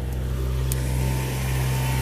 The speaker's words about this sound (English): Oh, here comes a car. Or not like a car, but it's like a park mobile.